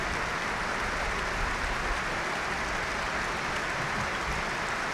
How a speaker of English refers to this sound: As applause rings out around the stadium.